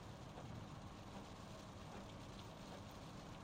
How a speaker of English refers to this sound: Anyways, it's raining.